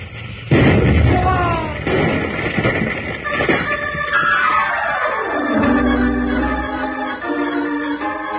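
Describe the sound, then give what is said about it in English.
A steam boiler explodes from low water in the boiler in a sudden loud boom, followed by a sustained roar of rushing steam and rumbling, with a tone that slides steadily down in pitch before settling into a lower hiss. “What's this about low water in the boiler, blowing her up?”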